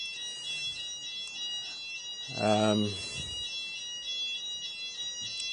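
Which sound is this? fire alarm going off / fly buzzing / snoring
fire alarm going off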